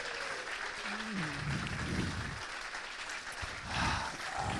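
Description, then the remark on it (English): A crowd breaks into sustained applause for the sponsors, Wolverhampton Building Supplies, a dense, steady wash of clapping that holds at a fairly even loudness throughout, with a few faint voices and cheers mixed in underneath. “First of all, round of applause to our superb sponsors, Wolverhampton Building Supplies.”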